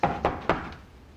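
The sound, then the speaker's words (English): Three quick, evenly spaced knocks on a door ring out sharply, followed by a faint fourth tap after a short pause, with no voices. “You know, once you're inside, you don't have to knock anymore.”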